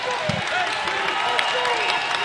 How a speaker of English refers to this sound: Catholic crowd getting into it.